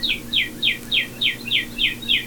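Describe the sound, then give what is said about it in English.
A cardinal sings outside a closed window in spring, a steady run of about eight clear, downward-slurred whistles, evenly spaced and moderately loud, heard from indoors over a faint low room hum. “You can tell it's spring because even though I don't have the window open, there's birds. You can hear birds. I think that one's a cardinal.”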